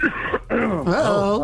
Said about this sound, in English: Uh-oh. Ricola ain't stopped that cough.